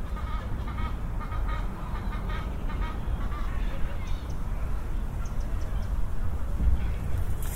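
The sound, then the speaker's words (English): A bird that came out from under decking beats its wings and splashes across the water's surface, half flying and half waddling, in a steady, rushing wash of noise. Goose-like honking calls sound in the background early on. “I just went to take a picture and this bird came out from under the decking that I'm standing on and whooshed its way across the water in a half fly, half kind of waddle across the water's surface.”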